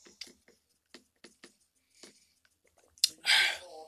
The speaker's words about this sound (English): Make sure you drink your water, kids.